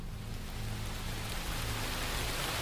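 Steady rain pours onto a hard surface on a cold night in Adelphi, Maryland, a dense, continuous hiss with a faint low rumble underneath, holding an even loudness throughout with no voices.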